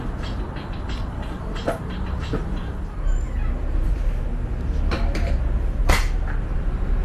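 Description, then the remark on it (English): Ambience at a freight cross-docking station at the edge of a city center, where goods are transferred from large trucks to small eco-friendly delivery vehicles: a steady low mechanical rumble with scattered sharp creaks and clanks rising above it every second or two. No voices. “This is the cross-docking station at the edge of the city center.”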